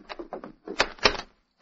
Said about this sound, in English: Open the door. He'll break it down, whoever he is. All right, have your guns ready. I'll open it.